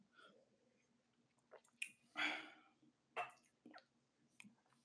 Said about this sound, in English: Sorry, my mouth is extremely dry. I'm a bit stuttering on words and like, man, hold on, let me drink some water real quick.